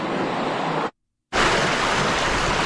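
Heavy rain pours down over rushing floodwater at a flooded street intersection in a loud, steady, continuous roar, briefly cut to silence before the dense downpour resumes. No voices.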